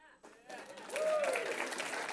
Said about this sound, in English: Boy, I can't tell you how happy I am to hear you clap at that one.